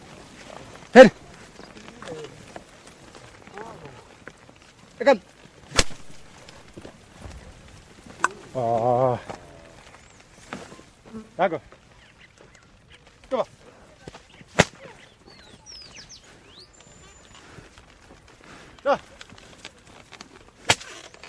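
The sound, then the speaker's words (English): Sharp whip cracks snap out at irregular intervals, roughly eight in all, over small oxen ploughing a quiet field, with a short voiced call rising midway through. The whip does not touch the animals and is used only to alarm them. “The whip you hear never actually touches the animals.”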